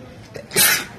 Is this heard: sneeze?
yes